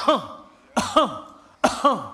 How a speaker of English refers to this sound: The cough. Have anybody ever been around somebody and they was coughing?